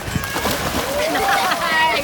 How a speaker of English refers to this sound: During the dog days of summer, there's nothing better for a kid than to splash around in the pool.